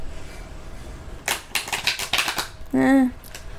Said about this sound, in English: It's a lot harder to shuffle these giant-ass cards.